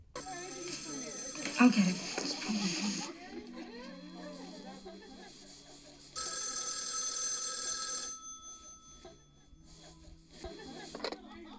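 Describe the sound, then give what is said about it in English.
An old-style telephone bell rings loudly in two long bursts separated by a pause in a film clip, as a call comes into a house where a group of girls gathers around to listen in, with faint voices murmuring between the rings. “This is one of the first phone calls into the house, and all the girls are gathered around, and they're going to listen in right.”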